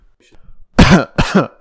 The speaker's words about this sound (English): Sorry, I had to clear my throat there.